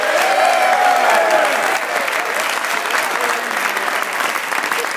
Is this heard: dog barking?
no